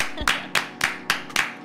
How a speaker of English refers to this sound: On 1, 2, 3, and give you a clap. One, two, three. Woo! I'm clapping you.